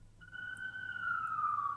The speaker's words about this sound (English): I'm sorry, the sirens are actually drowning you out.